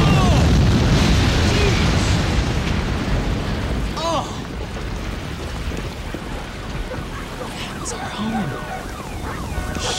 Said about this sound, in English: Our pal Long John Silver here left the gas on. Real bright. I mean, what if the house blows up?